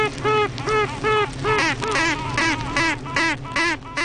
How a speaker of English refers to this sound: They're the toots and quacks of queen honeybees, duets detected during the late spring swarming season.